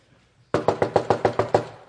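A rapid series of eight loud, heavy knocks pounds on a back door in a steady rhythm, each hit sharp, with no voices, while it is raining.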